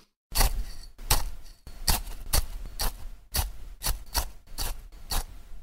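Forks crunch into dry muesli in a stepping rhythm, imitating a crow's footsteps: about a dozen crisp, gritty crunches in uneven pairs, fairly loud, with no talking.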